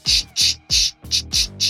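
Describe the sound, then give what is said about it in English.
A voice imitates someone sliding paper back and forth on a table during a recording, with six quick, loud, hissy bursts in a steady back-and-forth rhythm, each a breathy swish with a faint voiced hum beneath. “you keep sliding your paper back and forth on your table while we record.”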